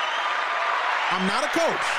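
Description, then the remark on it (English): Steady hand clapping runs throughout, a dense crackling wash of many claps, with a voice or cheering rising over it in the second half. “Can I get hand claps for that?”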